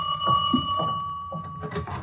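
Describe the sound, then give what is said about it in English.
A steady, high electric ring, like a doorbell buzzing continuously for about a second, then fading under murmuring voices and shuffling sounds. “Who do you suppose that can be at the door?”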